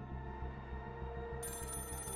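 A telephone call dialed to the emergency number 999 rings with a steady, rapidly pulsing warble before Scotland Yard answers. A brighter, hissier layer joins about halfway through, and no one speaks.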